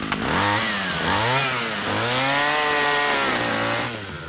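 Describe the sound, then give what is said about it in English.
Loud, continuous buzz of motorized clippers trimming fast-growing shrubs in a greenhouse, the whining motor pitch revving up and down in repeated sweeps for about four seconds, with no talking. “Take a pair of clippers and trim the shrubs until they look like something.”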